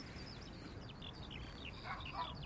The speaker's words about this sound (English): There's the skylark. It's right there.